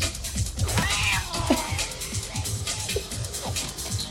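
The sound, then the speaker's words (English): A cat growls and yowls in low, drawn-out snarls over several seconds, fairly loud against a busy, noisy background. “I love that cat growls out.”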